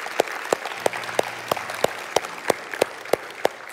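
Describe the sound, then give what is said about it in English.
An audience applauds to give God a round of applause after a prayer, with a steady wash of clapping and sharp, evenly spaced claps standing out about three times a second, moderately loud and continuing throughout without voices. “Come on, can we give God a round of applause today?”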